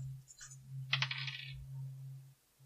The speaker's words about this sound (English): And we're going to roll a D100 for that. So I doubt we're going to roll the same on this.